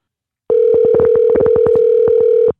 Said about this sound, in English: We had to make a phone call.